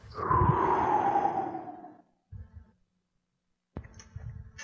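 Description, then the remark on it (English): A long, heavy breath pushed out through a stifled yawn, fairly loud, trailing off after about two seconds, followed by two shorter, softer breaths. “I was me suppressing a yawn as best I could.”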